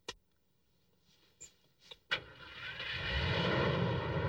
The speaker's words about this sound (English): And the car starts. It does.